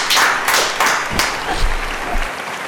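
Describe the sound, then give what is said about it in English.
A short burst of audience applause, a dense crackle of many hands clapping at once, fairly loud and steady for a few seconds before easing off slightly. “Let's have a hand. Applause. Applause all around.”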